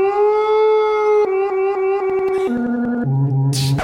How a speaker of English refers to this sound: My precious wolves will guard every square foot of this property. Listen to them.